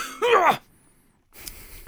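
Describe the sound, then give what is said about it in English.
A loud cough into the microphone from a person who was sick, with a voiced, groaning edge, followed after a short silence by a rougher, breathy burst like throat clearing right at the microphone. “The coughing around the mic.”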